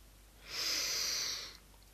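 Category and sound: human body sound, slow deep exhale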